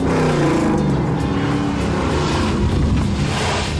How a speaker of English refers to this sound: And then she pulls off this maneuver. She's really driving the car and like spins it around.